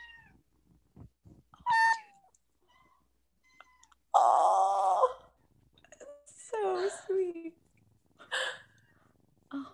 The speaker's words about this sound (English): They keep meowing, so I had to take them out.